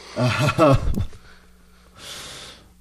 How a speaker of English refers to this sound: Even though I have a couple questions, because if I had a Bang earlier and I'm yawning right now, I have some questions about its potency.